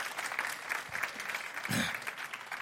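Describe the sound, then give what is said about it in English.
An audience applauds steadily, many hands clapping together in a dense, even patter with a brief murmur of voices beneath the clapping, applauding news that an overflow room will let them reach 800 people on Easter weekend. “You want to clap? Go ahead.”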